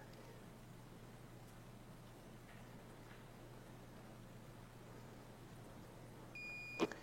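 A smart pill bottle alarm sounds near the end during a demonstration, signalling that it is time for the patient to take his medicine: a short, high electronic beep rising briefly above a steady low hum, with no one speaking.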